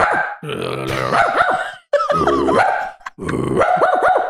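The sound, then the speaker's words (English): A person convincingly imitates a small dog barking: three loud, drawn-out bursts of yappy, pitch-swooping barks and yips, separated by brief pauses, with no other talking. “I do this talent where I bark.”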